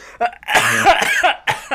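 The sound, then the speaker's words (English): A fit of harsh, sputtering coughs, loud, in several quick bursts with a strained, throaty rasp between them, from someone who swallowed water wrong and it went down the wrong pipe. “coughing away”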